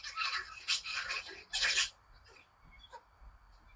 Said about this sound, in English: Yeah, that's my puppies. Acting an idiot.